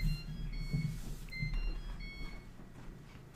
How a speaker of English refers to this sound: Well, I think I hear your dinner beeping at you in the background, so should we wrap it up?